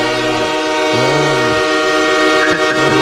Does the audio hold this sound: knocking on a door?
no